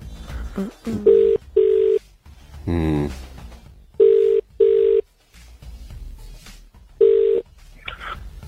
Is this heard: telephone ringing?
yes